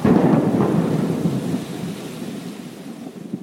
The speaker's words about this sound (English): Ah, it's 3 miles away. Sometimes we try to figure out which direction it's going in based on the thunder cracks, too.